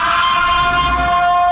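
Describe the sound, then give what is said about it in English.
A loud, steady siren blares in one sustained, reedy tone with a rich buzz of overtones, holding an unchanging pitch throughout the short clip with no voices. It is the curfew siren police used in Crowley, Louisiana, the same siren sound used in the movie The Purge. “They used the same siren sound used in the movie The Purge. So it goes something like this.”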